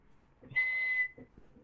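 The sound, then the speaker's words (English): One loud, shrill whistle blast, blown hard and held steady for about half a second, standing alone with nothing else around it. “He caught it up and blew hard.”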